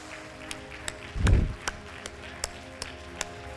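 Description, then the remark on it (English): An audience at a church service clapping hands together in a steady, even rhythm, about two or three claps per second, fairly quiet, with one dull low thump early on and no talking. “Clap your hands.”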